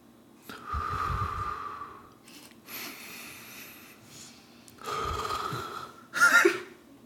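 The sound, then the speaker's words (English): Slow, deep, full breaths drawn in and pushed out, a few full cycles with short pauses between, airy and moderately loud with no talking, done as a counted breathing exercise. “so you go one, you breathe in, and then two, you breathe out, and then three, you breathe in, and then you breathe out, four, until you do like 20.”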